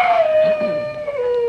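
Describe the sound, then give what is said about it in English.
A single coyote howl in the desert, a long sustained high wail that slowly slides downward in pitch, fairly loud, with no talking over it. “Well, it's either a coyote or somebody got his bill at the racket club.”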